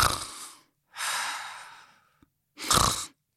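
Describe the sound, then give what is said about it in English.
A voice mimics heavy snoring: three loud, raspy breaths, the middle one a long drawn-out exhale, followed by a short pause, a small click, then a final rough snort-like breath. “So it's often linked to very heavy snoring. So you get people who sort of snore.”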